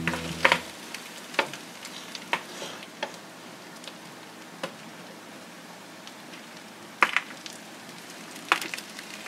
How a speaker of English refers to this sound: It's rustling. It is, yep, something going through material. Yes, that's true. It is a mouse rolling in leaves. That would be adorable.